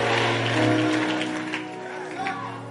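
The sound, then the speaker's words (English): An audience claps their hands in a dense, steady wash of applause, with a sustained low hum of voices and tones running underneath throughout. They clap at the preacher's call to clap and declare that their name will never be taken out. “Clap your hands and say, they will never take my name out.”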